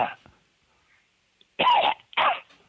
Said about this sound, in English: That's cough on the right side. Yes. Checking out good.